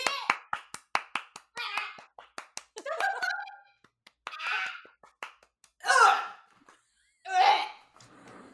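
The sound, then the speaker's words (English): An audience claps at a performer's request in quick, sharp, steady beats, with loud excited shouts and whoops bursting out between and over the applause as it carries on. “Keep clapping.”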